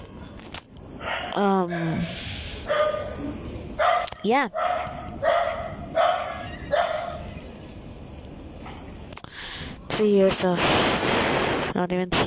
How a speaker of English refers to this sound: Oh, damn. Dogs.